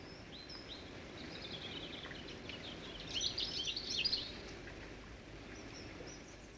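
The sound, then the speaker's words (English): Faint, thin birdsong in grey weather, with sparse high chirps and twitters over a low, steady rumble of background noise, becoming a little busier and louder in the middle before thinning out again. “The birds could only produce a thin thread of a song.”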